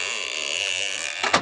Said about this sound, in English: Close the door.